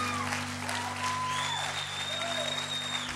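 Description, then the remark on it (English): A church audience applauds the music group, a steady wash of clapping hands at even loudness throughout, with a low hum underneath and a few faint whistles rising above the applause. “Can we give the music group a big group clap?”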